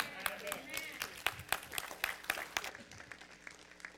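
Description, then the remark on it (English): A short burst of audience applause, with sharp claps crackling quickly and unevenly before thinning out and fading. Faint voices murmur underneath. “I'm looking at who applauded that.”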